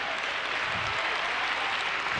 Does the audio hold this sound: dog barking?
no